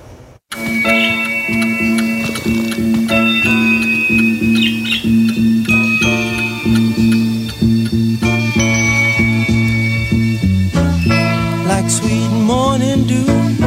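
A cat and a bird sing a tune together over steady musical backing, with a regular ticking beat and sustained tones, plus some sliding, meow-like notes toward the end. No one speaks.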